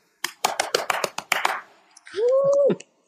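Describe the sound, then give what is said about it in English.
A short burst of hand clapping, around eight or nine sharp claps from a small group over about a second, followed by a single loud, high whooping cheer from one voice. “There's your round of applause.”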